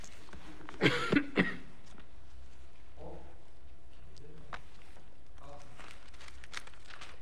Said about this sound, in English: Believe me, it ain't what it used to be. Cough ain't nothing now. This is the most I've talked for 3 weeks. I'm feeling it in the throat.